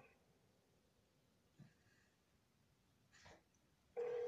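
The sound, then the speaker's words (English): Over a quiet phone line with faint shuffling, a loud, steady ringback tone suddenly starts near the end, the sound of an outgoing call ringing on the other end. “What is that, about 5 rings now? It's 8 now.”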